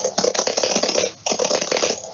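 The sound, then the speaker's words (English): Rapid, clattering keystrokes from a noisy old keyboard, typed normally in a steady flurry with a brief pause midway, with no talking. “So I'm just typing normally on the keyboard and you can hear.”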